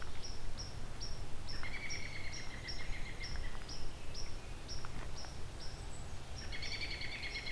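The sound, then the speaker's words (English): An American robin calling outdoors, with a run of quick, evenly spaced high chirps and brief clear whistled notes over a steady low background rumble. No one speaks. “American robin here too.”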